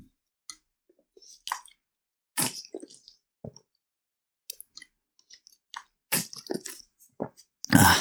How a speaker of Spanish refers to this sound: Voy a tomar un poco de agua.